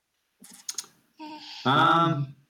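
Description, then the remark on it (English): A baby presses computer keyboard keys: a few quick clicks, then a louder sustained buzzy tone that holds for about a second before cutting off. “No, she's like about to touch a bunch of keys.”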